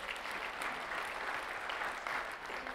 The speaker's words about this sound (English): Come on, give the Lord a hand clap in this place. Come on.